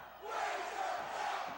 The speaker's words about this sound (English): What do they say? Crowd throwing shade. Where's your belt? Where's your belt?